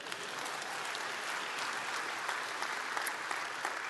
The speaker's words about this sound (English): That's a great place to clap this morning.